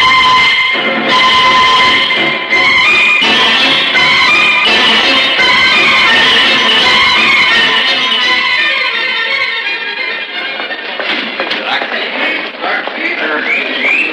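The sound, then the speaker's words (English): A train pulls out of a station, loud, with a dense rumble of wheels and hissing, sustained whistle-like tones, gradually thinning toward the end. “Oh, it's waiting across the border for this one to pull out.”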